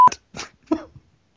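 A single short censor bleep, a steady high tone, sounds at the start, followed by a few brief, rough bursts of noise and then silence.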